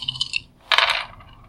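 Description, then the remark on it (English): Five dice rolled across a tabletop for a magic test, a short rattling clatter: a brief clicky burst followed by a louder scattering rattle that settles quickly, with no voices. “So you can do a magic test on them with your 5 dice of magic.”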